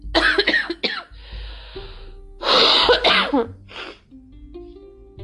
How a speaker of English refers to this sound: I'm really sorry that I'm coughing while recording.